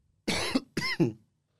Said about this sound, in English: It's dry. No, because of the cough.